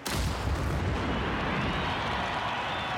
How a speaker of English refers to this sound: Soldiers fire a 21-gun salute.